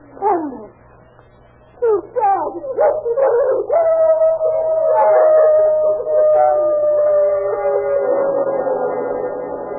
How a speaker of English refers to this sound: That howling's coming from around the back somewhere.